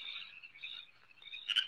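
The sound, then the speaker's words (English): Frogs croak in a steady, high, buzzing chorus that rises and dips slightly, ending in a sharper, louder burst of calls, in a Budweiser beer commercial. No one speaks. “The Budweiser Frogs have made a comeback.”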